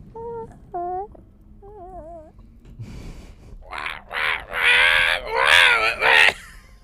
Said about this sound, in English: Birds.